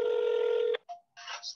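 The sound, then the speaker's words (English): A steady electronic phone tone holds for under a second and cuts off, followed by a brief softer beep, then a burst of crackly line noise, as a call is dialed from a work phone. “I'm gonna call my mom up.”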